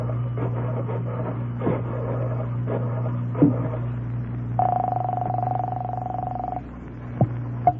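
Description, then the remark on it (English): A series of mechanical clicks, like a telephone dial turning, over a low steady hum, followed by a sustained electronic tone from the line lasting about two seconds, then a few more clicks, as a call to Major Dowd is placed from a phone in a candy store. “There's a phone in the candy store here. I'll call him from there.”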